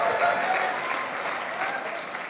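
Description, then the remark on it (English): A rowdy crowd bursts into steady, dense applause mixed with cheering, sustained at an even loudness throughout with no pauses, sounding full. “Oh, we got a rowdy crowd here.”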